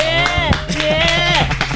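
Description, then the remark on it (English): About six people in a room clap in a quick, uneven patter, the scattered claps of a small group layered over a steady musical tone. “Give it let we get some claps now. We get some claps. There are like 6 people in the room.”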